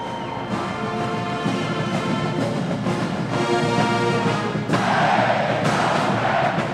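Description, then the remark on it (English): A dense crowd of fans gathered for a press conference yells and roars inside a reverberant arena, the noise steady and loud throughout, swelling to a brighter, more intense surge in the last couple of seconds. “Now you can hear them yelling, so maybe the coach and all is walking in.”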